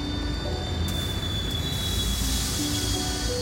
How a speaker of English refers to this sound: From outside came the sounds of hissing steam and squeaking metal. I looked through my window and saw a train standing perfectly still in front of my house.